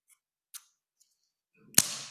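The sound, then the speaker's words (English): A Christmas cracker is pulled apart with a brief strain and then a single sharp, loud snap, followed by a rustling tail of paper. A few faint clicks come before it. “So let me pull it and see if it will bang, because that was their expectation.”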